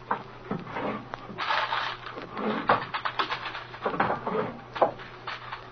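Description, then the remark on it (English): Wooden desk drawers slide and thump as someone rummages through them, with scattered clicks, knocks and papery rustling in an uneven stream of moderate-level handling noise. “Yeah, I think we better get going through these drawers in the desk, though.”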